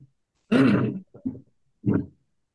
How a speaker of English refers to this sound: Oh, excuse me. I'm not actually going to say it. I had to clear my throat. Sorry.